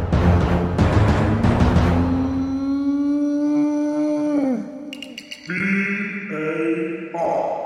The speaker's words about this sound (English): to send in your own rubbish VAR jingles. The Wolves game, as it happens, gave us plenty of opportunity to throw one of these in.